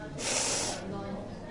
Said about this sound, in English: Well, normally, we can't use our sense of smell to tell minerals apart, except for this one. So do you want to have a sniff of that one? Oof.